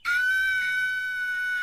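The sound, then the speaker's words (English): A voice imitates a piercing, high-pitched scream, one loud sustained shriek held steadily for nearly two seconds with no other sounds. “Oh, piercing. Scream loud.”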